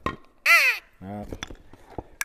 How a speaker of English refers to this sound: Deer grunt.